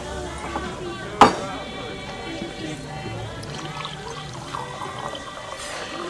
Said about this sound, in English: And then he goes to the diner and the guy pours his coffee and says, you like the Flash too?